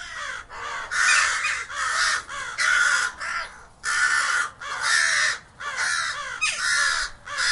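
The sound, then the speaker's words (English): Harsh, raspy crow caws repeat in a steady run of about ten calls, loud, with brief gaps between each call and no talking. “Crows and ravens.”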